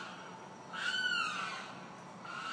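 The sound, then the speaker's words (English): A bird calls once outside, a drawn-out, slightly falling cry lasting under a second, heard over a steady background hiss with no talking. “Satan's bird is back.”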